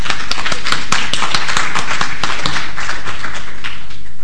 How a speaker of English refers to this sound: And I think it's most gratifying that she is among the audience tonight. I'm sure you can give her an applause.